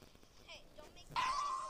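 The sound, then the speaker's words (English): A dog lets out a sharp, high-pitched yelp near the end, a short drawn-out cry that stands out loudly against faint background noise. “Oh my god, your dog yelped so cute.”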